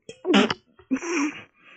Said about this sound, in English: I spit my water out on the screen.